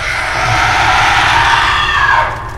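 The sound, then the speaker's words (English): A loud, piercing, unearthly shriek of a wraith, severely injured but not killed by a Finger of Death spell, holds steady for over two seconds before tapering off, backed by a low rumbling undertone and no talking. “And the Wraith shrieks out, not dead, but severely injured.”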